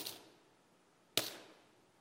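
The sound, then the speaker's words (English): Two small coins, lepta, drop one after the other as an offering. Each is a sharp metallic clink that rings briefly and fades, about a second apart, clear with no voices. “Her coins would have made very little sound as she gave them. Imagine, this is what you hear.”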